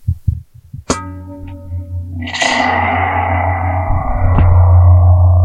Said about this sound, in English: And if you put this through distortion and reverb, it sounds like amazing.